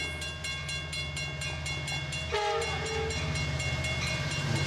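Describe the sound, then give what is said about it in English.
A train rumbles along the tracks with a steady rhythmic clatter while its horn blares continuously, loud, the horn's tone shifting partway through as it draws nearer. “In the distance, you see a light shine from the end of the train tracks as it starts to get closer to you.”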